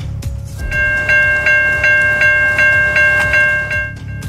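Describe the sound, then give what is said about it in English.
A train rumbles loudly on the tracks in Burnaby, Metro Vancouver, a steady whistle-like tone ringing over a deep low roar, with regular rhythmic clanks repeating every fraction of a second as it rolls along the tracks. “Danger on the tracks, what some people were doing just to get to the other side of a stuck train in Burnaby.”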